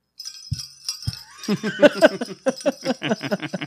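Bright, metallic jingle bells shimmer and rattle, starting with a few scattered shakes and a couple of soft thumps, then breaking into a quick, steady rhythm of jangling shakes.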